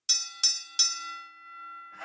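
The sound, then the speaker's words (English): A bell, the "Kenny Bell", is struck three times in quick, even succession, each bright metallic ding ringing on and slowly fading after the last strike. No one speaks. “Due to Joe's technical difficulties, I'm going to have to use the Kenny Bell today.”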